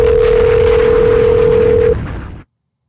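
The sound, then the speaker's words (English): A single steady ringback tone of an outgoing phone call sounds for about two seconds, loud and clear over a dense, noisy background that cuts off shortly after the tone stops. “better answer the phone.”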